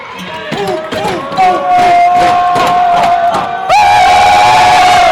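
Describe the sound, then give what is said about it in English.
A loud, dense crowd at a volleyball match between Olympus and Bingham roars and cheers continuously, with shouts and whoops rising above the din and a sustained high-pitched yell that swells even louder toward the end. “We gotta cheer loud for this one.”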